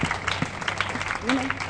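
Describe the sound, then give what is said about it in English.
An audience gives themselves a round of applause as survivors, a dense patter of many hands clapping at steady volume, with a brief voiced whoop or murmur rising from the crowd near the end. “So give yourselves a round of applause that we have survived and we're still here and we're not going anywhere.”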